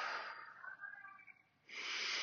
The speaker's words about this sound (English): Hola, hola, breathing, breathing.